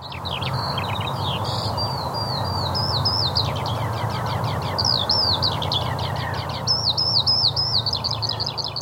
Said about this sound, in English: Techno Bird at the end of podcast 75 is a skylark, a summer visitor. It nests in the grass. It's usually the first bird to start singing early morning, hence the term up with the lark.